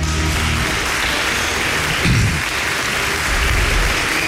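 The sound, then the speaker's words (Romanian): Steady, dense applause from a crowd fills the whole stretch, a continuous loud patter of many hands clapping with no pauses or voices standing out, applause for actress Carmen Tănase. “a apărut actrița Carmen Tănase, care astăzi face o figură foarte frumoasă la Gloriosul Zilei și o aplaudă.”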